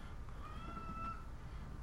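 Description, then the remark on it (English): A cat lets out a single drawn-out, plaintive cry after getting out of its litter box, heard faintly over a low, steady background rumble, with no one talking. “A cat. See, when she poops, she gets out of the litter box and she cries.”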